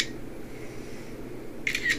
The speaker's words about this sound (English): If y'all heard that shutter, that's Jason taking pictures. For whatever reason, he's taking pictures.